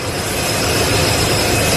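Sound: jet airplane engine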